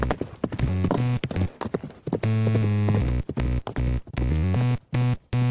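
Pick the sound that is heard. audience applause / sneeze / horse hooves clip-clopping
horse hooves clip-clopping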